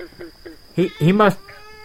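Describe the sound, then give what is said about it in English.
A cat meows twice, a short cry followed by a longer, drawn-out one with a rising and falling pitch, after a few soft faint sounds and with a steady high whine in the background. “Hi, Kitty. What are you doing?”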